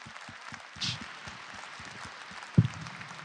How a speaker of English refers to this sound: Okay, I think that's all we have time for, unfortunately, but let's give Dr. Hyde another big round of applause.